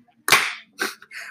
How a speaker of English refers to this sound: Oh my gosh, Will Smith got up from the seats. He's about to slap Chris Rock.